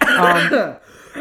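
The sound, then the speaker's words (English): A muffled throat clearing with a stifled cough, a short voiced rasp that slides down in pitch and fades into a faint breath, as someone tries to suppress a cough. “The thing is that, like, I have a bit of a cough, and I'm trying to suppress the cough because of the podcast, but that's making the cough happen more.”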